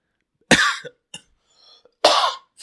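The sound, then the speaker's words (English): Two loud, close-up coughs about a second and a half apart, each a harsh burst right into the microphone, with a small throaty catch and faint breathing between them. “Sorry, cough right in the mic.”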